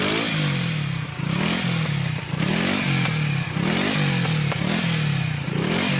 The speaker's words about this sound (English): What's wrong? Our motorcycle is stalled and we have to start all over again.